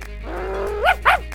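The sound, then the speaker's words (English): A person imitates a dog, starting with a drawn-out, rising growl and finishing with two quick, loud barks, with no other sounds around. “I'm very good at dogs.”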